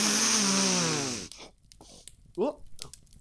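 A loud, deep, rasping sniffing inhale lasts over a second, harsh and noisy with a falling snorty tone, followed by a few short vocal sounds.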